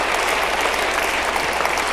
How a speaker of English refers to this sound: Can we give God one more round of applause and I'll preach? Amen.